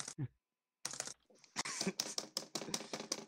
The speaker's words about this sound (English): Oh, I have a mechanical keyboard. I have like an old mechanical keyboard, so you might be able to hear space bar.